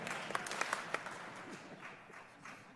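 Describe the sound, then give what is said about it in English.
An audience breaks into applause after a joke that California Governor Gavin Newsom is Idaho's Realtor of the Year, a few sharp, distinct claps at first that quickly blend into a steady wash of clapping, moderately loud, with no voices over it. “Clap twice if you agree.”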